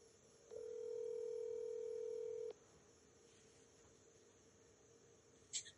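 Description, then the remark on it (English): A steady telephone dial tone hums for about two seconds, then cuts off, followed by quiet and a brief high-pitched beep like a key being pressed. No one speaks. “So with that being said, just give me just a few seconds and get this phone thing figured out, and we're going to get to talking.”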